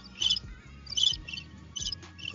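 Crickets chirp in steady, repeating bursts, about four trills spaced evenly apart, over a low rumbling background with no voices.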